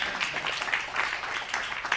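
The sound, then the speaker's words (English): A church audience claps for a testimony of God, steadily and continuously, a dense patter of many hands at moderate volume with no talking over it. “Oh, you can clap.”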